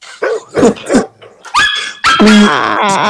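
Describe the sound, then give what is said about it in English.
A dog barking sound effect played from a soundboard: three quick, sharp barks, then louder drawn-out yelping barks with a whining tone, prominent with no talking over them. “you've been a mongrel, though. Been a dog.”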